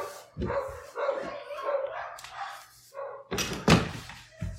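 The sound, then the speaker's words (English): Dogs bark repeatedly and loudly in a steady run of sharp yaps and woofs, with a harsher, louder burst of barking toward the end. “The dogs are so loud.”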